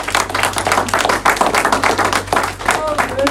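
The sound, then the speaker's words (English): A crowd claps hands together in a steady, rapid rhythm, loud and continuous throughout, with a low steady hum underneath and faint voices mixed in. “Come on, clap your hands and give Jesus.”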